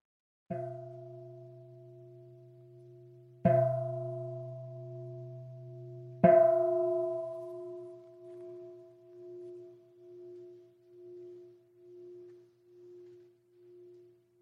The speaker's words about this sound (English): In a moment, I'll ring the bell to signify the transition. Notice what happens when I ring the bell.